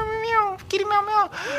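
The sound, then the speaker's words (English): A human voice imitates a cat, giving a few drawn-out, wavering meows in quick succession, fairly loud, with a breathy hiss between calls. “It's like. Meow, meow, meow.”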